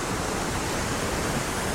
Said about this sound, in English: You can hear the hiss and the roar of the water crashing into the well-washed rocks below.